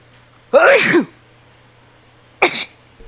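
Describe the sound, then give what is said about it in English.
Someone loudly imitates a sneeze as a joke, a drawn-out voiced 'ah-choo' followed about two seconds later by a shorter, sharper burst, with no other talking. “That was a fake sneeze.”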